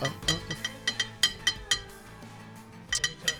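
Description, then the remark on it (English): A hand slaps a drinking glass over and over in a quick, uneven rhythm, each hit giving a bright, ringing clink over a low, steady hum. “You're spanking that glass, and I'd like you to open it, please.”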